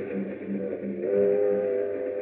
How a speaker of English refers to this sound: Meanwhile, on a train to Miami...